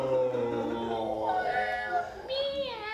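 Cat meows played back from a video, several drawn-out wavering cries overlapping and sliding up and down in pitch, fairly loud and continuous with no talking.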